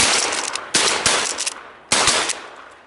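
Several loud, sharp gunshots from a crow hunt fire at irregular intervals, each blast trailing off in a long, rumbling decay before the next. No one speaks.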